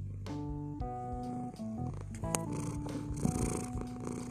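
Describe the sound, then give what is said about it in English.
A male domestic cat sitting right by the speaker purrs close by, a continuous low rumbling vibration with harmonic tones that rise and fall in a steady rhythm, heard alone without any talking. “I have a cat, right? And his name is Billy. He's sitting right here. I don't know if you can hear him purr.”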